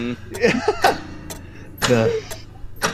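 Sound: clocks ticking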